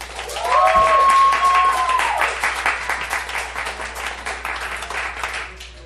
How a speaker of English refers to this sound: please applaud right now.